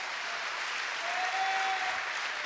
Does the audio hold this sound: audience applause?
yes